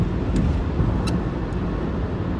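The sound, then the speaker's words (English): A steady, loud low rumble of a car driving down a road with no traffic, heard from inside the vehicle, with a few faint clicks over the constant engine and tire drone. “I shouldn't be doing this driving down the road. But there's no traffic.”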